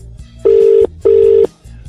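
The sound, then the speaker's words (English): A telephone ringback tone from a call to Tribeca in Manchester purrs twice in steady, evenly spaced bursts, each about half a second long, with a low hum underneath and no one picking up. “Do they not like answering phones in Manchester?”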